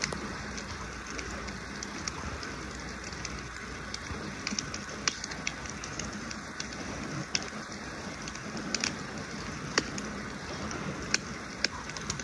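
Crackling campfire outdoors on a mountainside, a steady hiss broken by scattered sharp pops and snaps at an uneven pace, moderately quiet, with no one talking.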